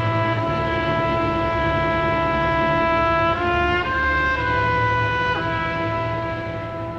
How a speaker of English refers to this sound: He jumps on the running board of the car, drives off, and then he's driving with Faye Dunaway in the car, and now finally we hear the trumpet play the melody.